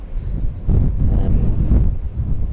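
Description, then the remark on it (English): Loud, roaring force 9 gale wind at sea buffets and rumbles steadily, heavy low-frequency gusts surging and battering without pause, with a faint hiss on top and no voices. “And obviously this is only force 9 out of 12, so.”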